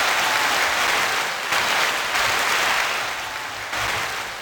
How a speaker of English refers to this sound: That was a long applause. It was a long one, yes.